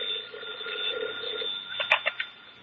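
A telephone bell rings with a steady, buzzing trill, then ends in a few short sharp jangles, on the personnel manager's desk in a newly completed defense factory. The tone is thin and narrow, and no one speaks.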